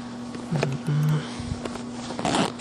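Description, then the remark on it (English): Scratchy rustling and short bursts of friction as a small zippered pouch is opened and rummaged through in search of a mask, with a low hum under the handling and a brief zipping rasp near the end. “I know I keep some mask in this thing. Some zipper thing.”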